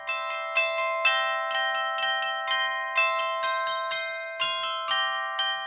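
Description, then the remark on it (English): Clock tower bells play a tune, each bell struck by a hammer worked by a computer-controlled electric solenoid; struck notes follow each other in a steady rhythm with long ringing overtones sustaining between strikes. “In the clock towers of churches and town halls, mechanisms were further developed to play tunes on the bells that were hung alongside the clocks.”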